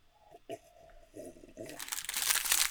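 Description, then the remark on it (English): Crunching of a crisp, toasty peanut butter cracker made by Lance being bitten and chewed, with brittle crackly bursts that grow louder and denser toward the end; no talking. “You have your toasty peanut butter cracker thing, and then we'll...”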